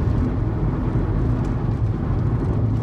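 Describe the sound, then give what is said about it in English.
A steady, loud low rumble of a car driving on the 405 freeway, the freeway to LAX and Long Beach, with constant road and engine noise and faint wind hiss, no talking. “So now we are on the 405 freeway.”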